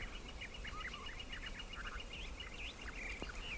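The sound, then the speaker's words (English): Gila woodpeckers and a gilded flicker call repeatedly at sunrise at Organ Pipe National Monument, in quick, sharp, high-pitched bursts, overlapping one another over a steady low background rumble. “Those are Gila woodpeckers, and that's a gilded flicker.”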